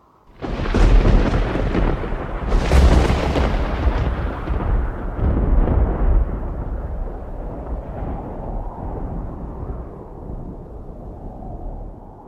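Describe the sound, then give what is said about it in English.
A loud roar of thunder during a gale whipping up sand cracks open with two heavy bursts, then rolls on as a long, deep rumble that slowly fades over several seconds, with no voices. “And then, even over the sound of the gale, I heard the roar of thunder.”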